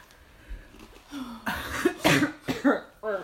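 A person coughs several times in close succession, harsh raspy bursts with a throaty rattle, loud, preceded by a brief throat-clearing sound and no talking.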